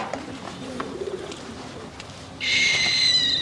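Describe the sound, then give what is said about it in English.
A little owl calls: soft, low hooting notes at first, then a sudden loud, harsh screeching hiss that continues to the end, with no one talking. “This little owl, it needs mouse, a rabbit.”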